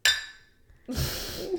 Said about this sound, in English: Yeah, we're excited to be back and drinking in mugs like we always do. Cheers.